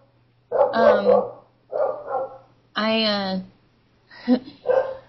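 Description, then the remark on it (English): A dog barks in four loud, drawn-out bursts spread over a few seconds, with a steady low hum running underneath throughout. “My dog. Dang it.”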